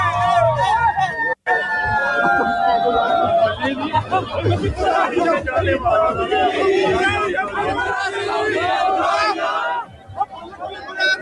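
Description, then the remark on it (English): A loud, dense partying street crowd in downtown Vancouver this weekend, shouting and cheering continuously, with wailing sirens rising and falling above the chatter and a brief cut near the start. “But first, this has been consuming a lot of people, sharing images, videos on social media of the partying and the crowds that were seen in downtown Vancouver this weekend.”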